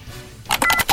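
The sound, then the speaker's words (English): A quick run of about five short telephone keypad tones, fairly loud, follows a half-second of near silence, as a number is dialed to call someone and wish him happy birthday. “Well, let's get Scotty G on the phone and wish him happy birthday.”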